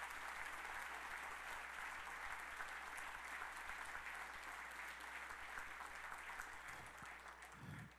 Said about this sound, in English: If you've received something today, why don't you just clap your hands for Jesus?